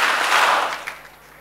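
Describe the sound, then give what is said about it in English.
An audience claps hands together in a dense, steady burst of applause that holds loud for under a second, then quickly fades out to near silence. “If there is a friend who is eating into your blessings, clap your hands and say, cut off.”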